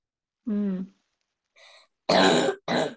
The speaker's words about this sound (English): Oh boy, your cough. Yes, I sure have a bad cough, but it will not go away for a while.